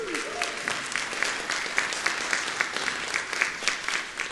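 Sustained audience applause for the speaker's wife on their 18th wedding anniversary, a dense, steady patter of many hands clapping at moderate volume throughout, with crisp irregular peaks and no voices standing out.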